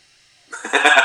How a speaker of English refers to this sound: Gesundheit.